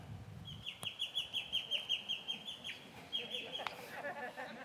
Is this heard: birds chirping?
yes